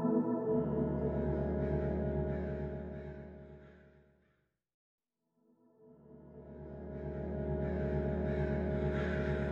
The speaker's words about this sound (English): After that morning, the crows take over that songbird tree. So the chirping within the span of a couple hours gets taken over by crows squawking.